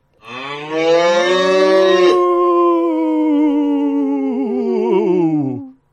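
A single long, eerie cow moo, a spooky ghost-cow sound effect played from a soundboard, stretches over about five seconds, loud, its pitch sliding and quavering toward the end like a ghostly wail, with nothing else around it.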